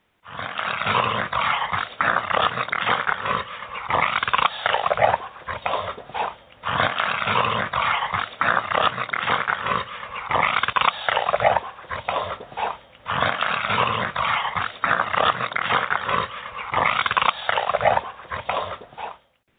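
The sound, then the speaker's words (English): A gorilla snarls in three long, rough, rumbling bouts separated by short pauses, loud with no other sounds around it. “One is a gorilla snarling, which we don't have gorillas in North America, but sometimes you hear a Bigfoot snarling.”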